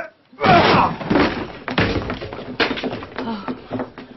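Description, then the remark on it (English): Two men ram the solid, locked door from Inglethorp's room: a heavy crash followed by several more thuds and splintering cracks at uneven intervals, loud, with some strained voices mixed in. “The door looks pretty solid to me, but the two of us ought to be able to manage it.”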